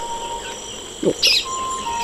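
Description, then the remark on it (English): A couple of quick chirps from Amazon rainforest birds, one lower and one high and bright, rise briefly over a steady, thin whine of insects or ambient hum. “It's a veritable cavalcade of exciting birds.”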